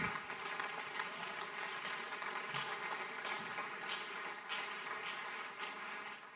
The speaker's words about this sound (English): Rise up to your feet. If you receive the word, clap your hand. Give God a better praise right now.